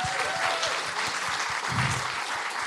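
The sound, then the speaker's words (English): A crowd claps steadily for the guests at an evening event, a dense, continuous patter of many hands at an even level for the whole stretch, with no voices rising above it. “It's not a round of applause for the guys, please.”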